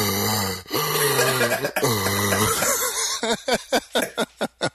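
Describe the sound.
A voice imitates heavy, labored breathing, mocking someone's breathing: a few loud, raspy, drawn-out vocal wheezes, then a quick rhythmic run of about seven short, breathy puffs.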